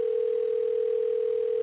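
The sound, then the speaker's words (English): A steady, unbroken telephone dial tone of an outgoing call hums at a single mid pitch for nearly two seconds, then cuts off abruptly, with no voices over it. “so I'm going to call them right now, okay?”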